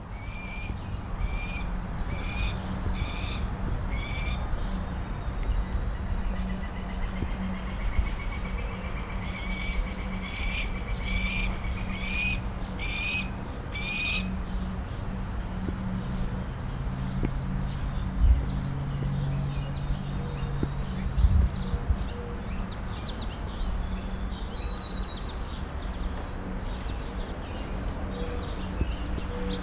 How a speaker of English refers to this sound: Was a neighborhood with what I think are adolescent red-tailed hawks. If you know there's something else, do tell.